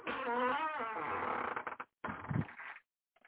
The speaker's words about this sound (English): Listen to the door. The creaky door.